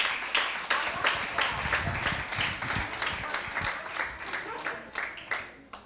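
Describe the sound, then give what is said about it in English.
A crowd claps steadily for several seconds, dense overlapping hand claps forming a broad, sustained wash of applause with rhythmic peaks, no speech on top. “All right, you can clap it up.”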